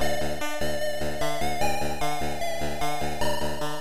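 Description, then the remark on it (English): Bright, buzzy electronic video game music with chiptune-style square-wave tones bouncing in a quick, steady rhythm, played loud with no voices. “And music has changed from an electronic style”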